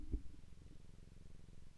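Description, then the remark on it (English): A cat named Barnaby purrs steadily right up against the microphone, a low, rumbling, continuous vibration with a soft rhythmic pulse and no talking. “That's a really satisfying purr.”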